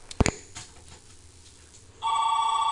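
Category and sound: signal or alarm, telephone ringing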